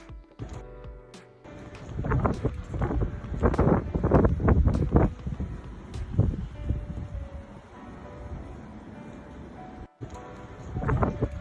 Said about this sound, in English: there's a video from flooded roads in southern Alabama. So this is nowhere near the eye of the storm. This is simply from the rain band.